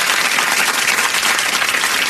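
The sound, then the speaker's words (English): An audience breaks into steady applause, a dense, even wash of many hands clapping at once that stays loud and constant throughout, with no voices standing out. “Let's hear it for the prostitutes out there.”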